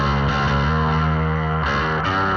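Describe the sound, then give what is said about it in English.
Distorted electric guitar played through a pedal with treble and bass controls, the treble cranked up so the bass is lost, giving a bright, thin, radio-like tone. Loud sustained chords shift a few times, with no talking. “Yeah, so if we're gonna be like, okay, super crazy and do like really trebly, now you lost your bass.”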